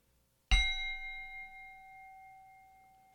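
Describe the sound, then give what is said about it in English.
A single meditation bell is struck once to begin three shared breaths before a guided meditation, ringing out clearly with a bright attack and a long, shimmering sustain that fades slowly into silence. “So at the sound of the bell, we're just going to do 3 glorious breaths together, and then I'll lead us in a meditation.”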